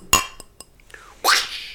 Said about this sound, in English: I just clanked two glasses together because we're all sitting socially distanced.